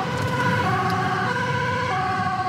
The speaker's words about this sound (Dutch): Opeens gaan de zwaailichten aan en de sirenes erbij. Hebben we een spoedje? We hebben nu een spoedje. OGS noemen we dat. Optische geluidssignalen. We rijden nu met spoed naar een incident op de A12.